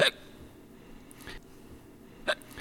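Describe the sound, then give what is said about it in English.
Three sharp, voiced hiccups break a quiet background, about a second apart; the middle one is softer and the first and last are louder. “… usually does the jingles here, but he's got the hiccups”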